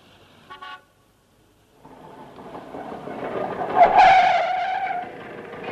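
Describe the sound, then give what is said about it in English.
A short, bright horn toot is followed by a pause, then a small scooter engine starts up and revs in Clacton, growing louder and buzzier as it seems to pull in. “Voulez-vous like to hop on the back of this scooter and live it up a bit?”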